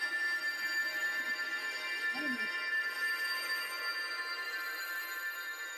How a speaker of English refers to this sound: Let's see what happens as it becomes a solid again. We watched as a silvery scum formed on the top. As it cooled, it made a tinkling sound, like fine silver bells being rung.